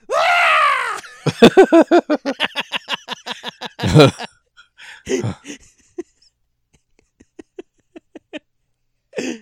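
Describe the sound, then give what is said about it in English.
A goat bleats loudly: one long, wavering cry, then a rapid stuttering series of bleats, another sharp bleat, and a few fainter, broken calls trailing off. “Do goats make that sound? It sounded like Goat Boy. Okay, here. It's a goat.”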